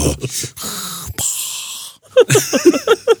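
A voice imitates Darth Vader's heavy masked respirator breathing: two long, hissing, wheezy breaths in and out, fairly loud, followed by a person starting to talk.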